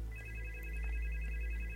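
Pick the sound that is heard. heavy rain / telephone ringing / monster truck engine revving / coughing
telephone ringing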